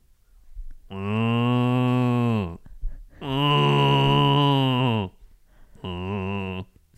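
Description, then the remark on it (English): A person imitates a cow with three long, loud mooing calls, each a sustained, harmonically rich bellow lasting a second or two, the last one shorter, with brief pauses between. “Can you do an impression of a cow?”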